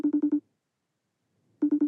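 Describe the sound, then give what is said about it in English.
A telephone rings on the line, two quick bursts of rapid trilling pulses separated by about a second of silence, steady and moderately loud with no voices. “And remarkably, somebody answers.”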